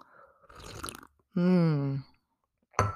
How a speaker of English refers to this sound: I forgot to take a sip.